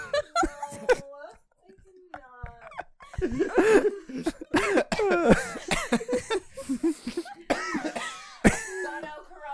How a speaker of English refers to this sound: …, are you coughing?